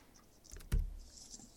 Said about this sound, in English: Dice are still rolling.